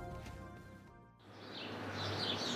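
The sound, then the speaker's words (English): Birds chirp and twitter in a busy outdoor ambience, a scatter of high, quick calls at moderate distance, following a short sustained tonal sound that cuts off abruptly. “Ooh, is that the sound of Harvard-educated birds?”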